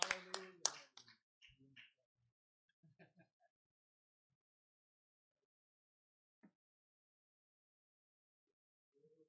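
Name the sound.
audience clapping hands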